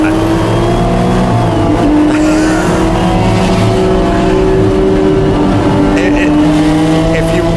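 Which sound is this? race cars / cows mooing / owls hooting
race cars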